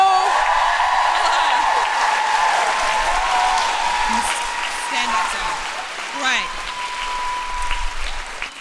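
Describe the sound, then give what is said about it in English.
An audience claps steadily for Rose Mattafeo throughout, a dense patter of hands mixed with whoops and high cheers that rise and fall over the sustained applause. “Please clap your hands and make huge Guilty Feminist woo-hooing noises for the wonderful Rose Mattafeo!”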